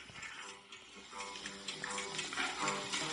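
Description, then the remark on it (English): A pig squeals and grunts in a continuous, noisy stream, the harsh cries growing slightly louder toward the end, with no voices. “I'm gonna get a pig. Can you hear that? Yeah, I can hear it.”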